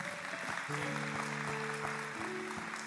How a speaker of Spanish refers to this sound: Y aquí como recuerdo, que puede ser fuerte aplauso, sí.